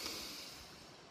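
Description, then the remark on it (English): A single long, deep breath drawn in, a steady airy hiss held for about a second and fading slightly at the end, with no talking, taken with eyes closed and one hand on the heart and one on the lower belly. “And if you're not driving, take a big deep breath in, close your eyes.”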